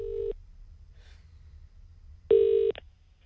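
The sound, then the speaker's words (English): A telephone line rings out as an outgoing call is placed: two steady electronic ring tones, each under half a second, spaced about two seconds apart over a low background hum, with no one speaking. “Okay, so what we're going to do, because we don't know much about politics apart from great puns, is phone someone to be our political reporter. The only thing is they don't know we're calling.”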